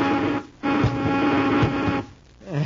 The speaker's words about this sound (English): Rorman, buzz them with the ray gun, quickly!